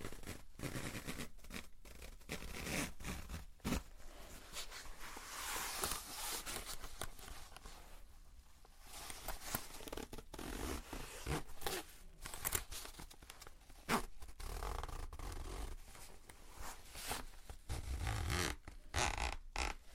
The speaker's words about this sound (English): Probably quite childish of me, I know, but I really love the sound of opening and closing zips.